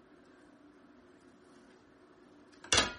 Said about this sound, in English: So, I'm going to, as always, grab a dinner plate to catch my spills. Put my half cup on the plate and pour sugar.